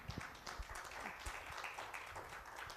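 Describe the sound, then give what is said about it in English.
A church audience applauding as a hand clap of praise to God, dense overlapping claps spread evenly across the whole stretch at a steady, fairly loud level, with no one speaking over it. “Can you give God a hand clap of praise for that?”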